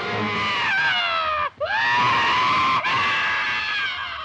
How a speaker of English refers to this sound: His screams are truly blood-curdling in an era before the Wilhelm.